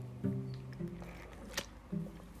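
Quiet sipping of water: a few soft gulping swallows with a brief wet click in the middle, no talking.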